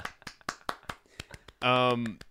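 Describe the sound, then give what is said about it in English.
A short burst of quick hand claps, about a dozen sharp slaps, ends in a loud sustained voiced cheer, one person imitating a soundboard applause effect. “Can we get an applause line on the soundboard?”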